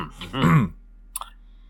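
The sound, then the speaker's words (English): A person clears their throat once, a short rough rasping grunt, then there is a brief pause and two quick faint clicks. No one speaks. “I can clear my throat.”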